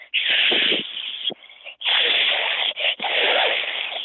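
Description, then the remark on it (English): A person imitates a goose's hiss: three loud, breathy, sustained hissing bursts separated by brief pauses, harsh and airy with no voice or words. “Let's hear your goose hiss.”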